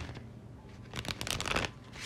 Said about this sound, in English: Let me give these cards a little bit more of a shuffle. Just because.